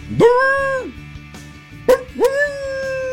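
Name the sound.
dog barking and whimpering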